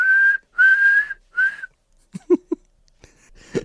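A 10-penny whistle, blown by a police officer to call in other officers, sounds three shrill, steady blasts, the middle one longest and loud, followed by a few short, low, muffled bursts.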